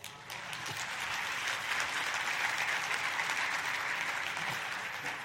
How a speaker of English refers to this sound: See, I know you're not applauding for me. I know you're applauding for the material because that's mind-blowing.